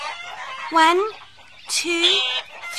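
Chickens cluck and squawk in two loud, bursty outbursts, with scratchy noise between calls and no talking, as seed is scattered for them over a low fence and they push, flap and flutter to get to the food first.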